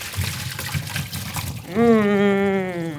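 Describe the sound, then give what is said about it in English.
Water pours steadily from a pot of butternut squash into a sink for about a second and a half, a rushing splash as the squash is drained, before a sustained voiced sound cuts in over the fading trickle. “I'm going to get our butternut squash over to the sink. Okay. To drain the water out.”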